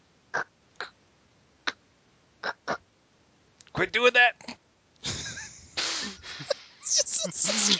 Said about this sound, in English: Why are you coughing into the mic?